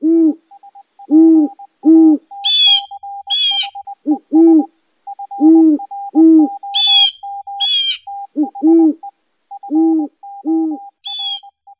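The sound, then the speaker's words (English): Owls hoot repeatedly, loud, in deep paired and triple hoots over a steady patter of softer, higher piping notes, with bursts of shrill chittering calls breaking in now and then. “So let's shine our light into the darkness and take a closer look at those nocturnal birds of prey, the owls.”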